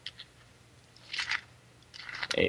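Paper pages being flipped, heard as two short, crisp rustling bursts separated by a brief pause, fairly quiet and with no voices.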